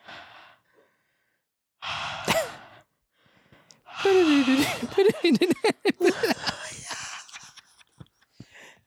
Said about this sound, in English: Whoa, that was intense, especially the breathing at the end. That was very scary. Honestly, I was like, the story was like fine the whole time. And then the breathing really, you sold it.